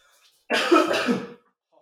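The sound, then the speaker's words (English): A single harsh cough, fairly loud, lasting under a second with a slightly throaty, rasping finish, alone against near silence. “I'm going to get some water, man, because I keep coughing.”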